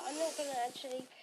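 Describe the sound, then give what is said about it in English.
A steady, hissy inhale through the nose during a breathing exercise, lasting just over a second, with a faint whistling, tonal edge riding on the airflow. “So today we are going to just start with breathing in through your nose.”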